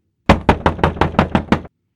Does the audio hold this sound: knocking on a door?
yes